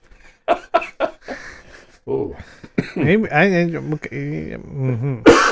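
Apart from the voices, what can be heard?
coughing and throat clearing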